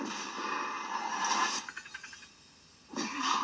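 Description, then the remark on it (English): Heavy, raspy breathing of the film character Leatherface: a long harsh breath, a brief rattling catch, a pause, then another rough breath begins. No one speaks. “The way Leatherface is breathing in this jaw, man.”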